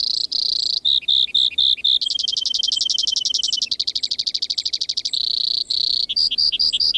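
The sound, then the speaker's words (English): A Brewer's Sparrow sings a long, continuous song of high, rapid trills and buzzy chattering phrases, shifting in speed and pitch every second or so, clear with no talking. “While most birds offer a melody, the Brewer's Sparrow seems to perform an entire aria.”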